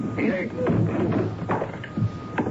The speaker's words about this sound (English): We'd better break the door down. Stand away. I don't know how to do this.